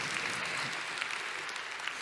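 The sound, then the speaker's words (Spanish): Sustained audience applause for a group of young men, a dense steady patter of many hands clapping at an even loudness throughout, with no voices standing out above it. “Un aplauso a esos muchachos.”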